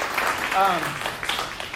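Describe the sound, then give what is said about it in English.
A crowd applauds the music team with a steady wash of clapping that carries through the whole moment, and a brief voice or cheer rises over it near the start. “Give Zach a hand.”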